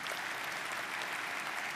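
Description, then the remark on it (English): A crowd claps for the Lord together in a steady, dense wash of applause that holds an even level for the whole moment, with no voices standing out above it. “Because, you want to give the Lord a clap?”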